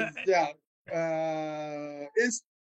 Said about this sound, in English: Did you hear my wife yelling in the background? What did she say? I don't. She was telling me what it was.